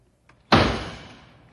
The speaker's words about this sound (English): how many times must I tell you not to bang the door?